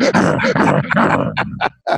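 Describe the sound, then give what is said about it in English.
A human voice imitates a barking dog, with gruff, growling barks running together before breaking into a few short, sharp yaps. “Give me a barking dog, baby.”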